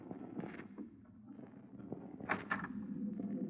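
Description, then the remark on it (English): A few light, quick raps on a ship's cabin door, soft and tentative, an unmistakably feminine knock at night, the night before the ship docks in Southampton, standing out briefly against a low, steady rumble. “Then, the night before we were due to dock in Southampton, I was surprised in my cabin by an unmistakably feminine knock on the door.”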